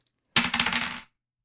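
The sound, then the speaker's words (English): Two six-sided dice (a 2d6 roll plus charisma) rolling across a surface and coming up seven: a brief, busy clatter of sharp clicks that tumbles for under a second and then stops, with no voices over it. “Give me a 2d6 plus charisma.”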